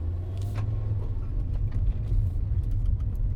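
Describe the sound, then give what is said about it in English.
A steady, heavy road rumble from a car moving along a busy four-lane main artery road in town, with continuous low engine and tire noise and faint passing traffic hiss throughout. “4 lanes, one of the main artery roads in town.”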